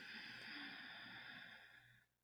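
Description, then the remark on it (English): A long, steady deep inhale drawn in through the nose during a breathing exercise, a soft airy hiss lasting about two seconds before stopping abruptly. It is quiet, with no talking. “Sip in through the nose, deep breath in.”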